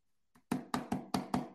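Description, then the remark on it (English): Knuckles rap on a hardcover book five times in a quick, steady rhythm after a faint initial tap, each knock solid and hollow-sounding, with no voices. “When you knock on it, it makes that sound.”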